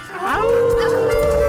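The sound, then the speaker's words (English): People howl together in imitation of dogs on a count of three, howling at the moon dog on the Moondog Show, a loud sustained group howl that rises in pitch and then holds a long steady tone, with several voices blending. “So all right, everybody, on the count of three, we gonna howl at the moon dog.”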